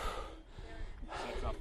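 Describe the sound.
Heavy, close breaths right against the microphone, two broad rushes of air with a brief lull between, loud and breathy with a faint murmur of voice underneath.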